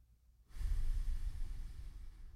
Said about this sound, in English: First thing you got to do, start breathing in and out through your nose. Control breath in and out through your nose.